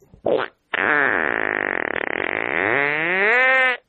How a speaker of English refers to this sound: And he's just sitting there before he walks away. He just kind of responds to his son with a very long fart and then leaves. It's the ultimate sign of disrespect.